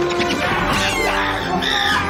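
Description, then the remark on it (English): In a film clip, a monkey attacks a person, tearing at their head: loud, frantic high-pitched shrieks and screams tangle together in a dense, chaotic burst that runs continuously for about two seconds. “Damn, that monkey's tearing their head up, man.”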